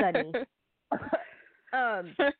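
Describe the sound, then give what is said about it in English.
A person fakes a cough with a few short, voiced, cough-like bursts in two clusters separated by a brief pause. It is moderately loud, more a vocal imitation than a real cough. “Not sure what his status is, but, you know, he also has freckles. cough, cough.”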